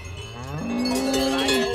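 A cow lets out a long, low moo that rises and then holds steady, while cowbells clank and jingle. Several cattle in a herd are being driven along a path through snow, with no talking.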